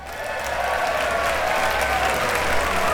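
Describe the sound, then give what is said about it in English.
A large audience in a chamber applauds steadily after a speech, a dense wash of clapping hands that holds at an even, loud level throughout with a faint murmur of crowd underneath. “The chamber burst into applause.”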